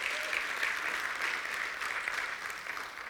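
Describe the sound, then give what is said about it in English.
An audience gives a round of applause during a morning church service, a dense wash of many hands clapping at an even level for a few seconds, without any talk over it. “Come on, let's give him a great round of applause this morning.”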